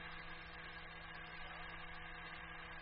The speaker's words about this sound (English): Blimey. We didn't even feel it. They don't offer any resistance, Lemmy. The tractors are knocking them flat.